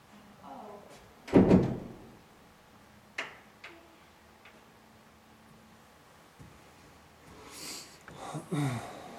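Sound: door opening or closing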